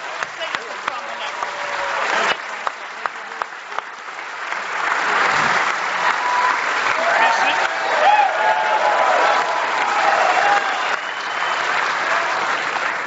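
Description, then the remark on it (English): An audience bursts into sustained applause for two gentlemen, a dense wash of clapping that swells and holds steady at full volume for several seconds, with scattered individual claps standing out early on. “So I want to give one more round of applause to two gentlemen who should be in the Smithsonian”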